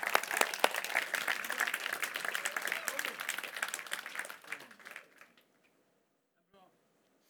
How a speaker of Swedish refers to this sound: Ja, ge Jesus en ordentlig applåd om du ska applådera.